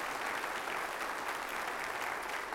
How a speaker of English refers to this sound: Would you give the Lord a round of applause because he's such a good God?